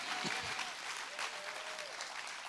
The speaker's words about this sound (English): Come on, I think we ought to clap our hands and say a good amen.